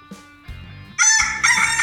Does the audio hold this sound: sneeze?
no